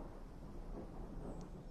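A low, continuous rumble of thunder rolls through a stormy soundscape, steady and fairly quiet, with a soft hiss like rain spread over the top and no voices.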